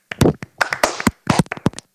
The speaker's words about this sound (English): Give him a clap, boys and girls.